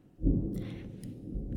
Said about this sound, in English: And it is thundering like a motherfucker outside.